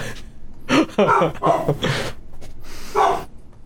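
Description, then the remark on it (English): A dog lets out a quick run of barks mixed with whimpering whines, then falls briefly quiet before one last whiny yelp. “Everybody's dogs.”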